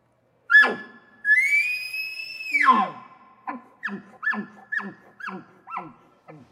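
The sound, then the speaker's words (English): An imitated elk call, performed alone: a sharp bark, then a long, high, whistling scream, followed by a quick rhythmic series of about six grunting chuckles, fairly loud. “Bark chuckle, bark scream.”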